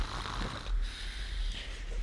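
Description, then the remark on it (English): A man snoring, with low, rough, snorting breaths rumbling over a steady background hiss; no one speaks. “I suppose that man in his snoring is going to drive me up a wall.”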